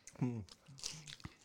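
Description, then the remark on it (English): Crunching as someone chews crispy chicken nuggets, with a few sharp crackly bites and a brief hummed vocal sound near the start. “We could upload this ASMR nugget eating.”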